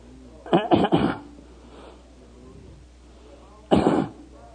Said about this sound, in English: And Jesus hears somebody clearing their voice behind him.